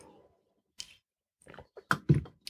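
Quiet sipping of hot tea: a faint slurp followed by a few soft wet mouth clicks and a swallow, scattered over a couple of seconds with no talking.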